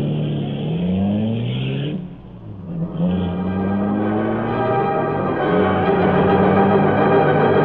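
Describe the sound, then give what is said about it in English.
The engine of the Black Beauty, the Green Hornet's streamlined car with Cato at the wheel in a dark alley near the waterfront, revs up loudly, its pitch rising in sweeping harmonic glides, dips briefly, then roars steadily as the car accelerates away. No voices are heard. “There, Cato was waiting at the wheel of the Black Beauty, fabulous streamlined car of the Green Hornet.”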